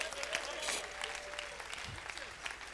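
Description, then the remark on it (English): An audience claps together for the Lord Jesus in a dense, steady burst of applause, many hands overlapping into a continuous crackling wash at moderate volume, with faint murmuring voices underneath. “Clap for the Lord Jesus.”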